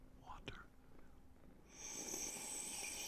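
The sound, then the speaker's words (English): Someone sips water right up against the microphone: a brief wet slurp, then a longer, steady hissing draw of liquid through the lips, close and fairly quiet with no talking. “Y'all, give them that water ASMR.”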